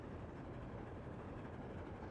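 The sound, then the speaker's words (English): A train rolls steadily along the tracks, its wheels making a continuous low rumble and clatter throughout, with no voices present. “Elmo likes hearing the train wheels click-clacking on the tracks.”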